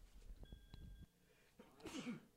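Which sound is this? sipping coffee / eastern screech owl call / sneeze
sneeze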